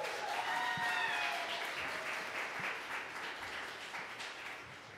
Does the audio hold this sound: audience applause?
yes